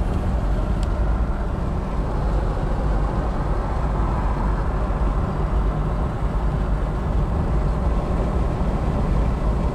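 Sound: car driving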